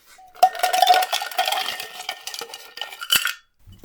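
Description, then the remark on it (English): A rapid cluster of hard clinks and clatters as ice cubes tumble into a metal cocktail shaker already holding lime juice and simple syrup, fairly loud, with a last sharp knock near the end. “Now I add some ice.”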